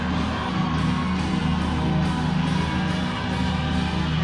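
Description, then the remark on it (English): A church audience shouting and cheering together to give the Lord a shout, in one loud, continuous roar of many voices, holding steady for several seconds without a break. “If you believe the Lord's power has done something, give him a shout.”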